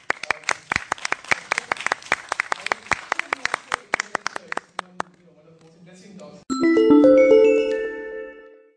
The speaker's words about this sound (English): So, firstly, let us give a huge round of applause to Bhanu sir.